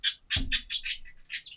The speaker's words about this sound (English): Are you done, Bird? Thank you.